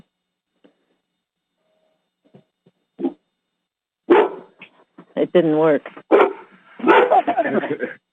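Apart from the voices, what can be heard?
dog barking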